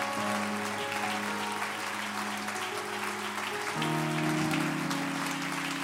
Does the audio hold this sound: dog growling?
no